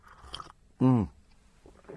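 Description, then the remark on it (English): A single quick, loud slurp of coffee lasting about a quarter second, with faint murmuring before and after. “Anyway, excuse me, quick slurp of...”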